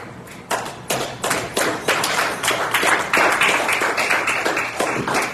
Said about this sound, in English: Stand your feet and give God a hand clap of praise. Amen.